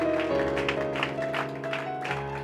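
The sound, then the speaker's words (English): An audience claps steadily as a clap offering after a prayer, for those who prayed or recommitted themselves. It is a dense wash of many hands, while sustained keyboard chords hold underneath and shift once near the end. “Can you give a clap offering for those who just may have prayed that or recommitted themselves?”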